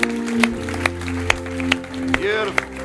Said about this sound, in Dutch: At least 34 people. Let's give God a big hand.